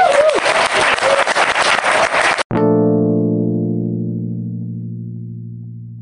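A crowd applauds loudly with dense, steady clapping for a couple of seconds at the end of a talk at Museum Camp, then it cuts off abruptly into a low, sustained humming chord that slowly fades.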